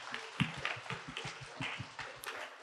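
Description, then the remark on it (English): A brief, fairly soft round of applause: a handful of people clapping in quick, uneven bursts for a couple of seconds, with no talking over it. “Yeah, we could give a round of applause to that.”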